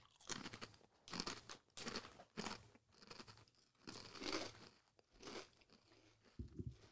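Loud crunching of a crispy pork-flavored snack with long curved pieces, with repeated sharp bites and chews coming in irregular bursts, no talking over it.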